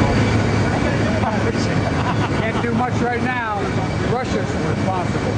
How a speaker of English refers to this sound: But he's getting on a plane, and someone yells a question out to him. I'll try not to blast you with the ears because you're going to hear jet engines in the background.